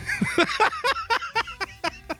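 A man eating a whole chicken wing with no hands gives a quick run of small, sharp coughs as the bone gets too close to his airway, about eight short bursts in a steady rhythm, moderately loud, with no one speaking.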